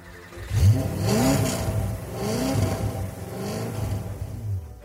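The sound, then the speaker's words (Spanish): A Porsche sports car engine revs up and down several times in quick succession, its pitch rising and falling in repeated swells, at a house in a suburb of Liège. Fairly loud, with no voices. “Tenía estacionado ahí un coche maravilloso, un Porsche.”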